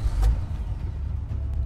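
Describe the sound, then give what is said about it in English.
A sharp mechanical clunk, like a car door lock engaging, followed by a steady low rumble of a car engine running, with no voices. “But as soon as he got inside, the car door was locked by itself. Then the car started moving automatically.”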